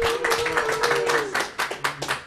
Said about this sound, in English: So a nice big round of applause for these gentlemen.